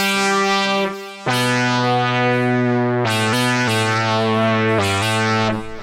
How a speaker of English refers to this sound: Repro 5 here. Factory preset. Bit more of a polyphonic preset there. We got monster leads.